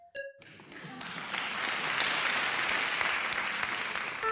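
Applause from an audience swells quickly after a brief tonal blip at the start, then holds as a dense, steady wash of clapping for about four seconds.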